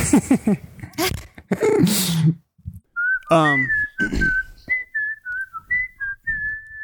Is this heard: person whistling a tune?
yes